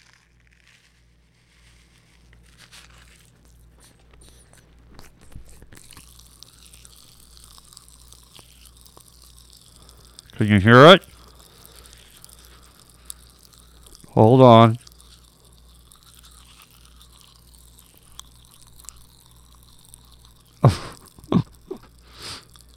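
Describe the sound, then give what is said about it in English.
Pop Rocks popping candy fizzes and crackles against teeth with the mouth pressed against the microphone, a steady faint hiss broken by a few loud, sharp crunching bursts and clacks. A person briefly speaks between them. “I'm going to dump a mouthful in, and I won't say anything in the next minute because I'm going to put my mouth right against the microphone, and hopefully you can hear my teeth sizzling and clacking.”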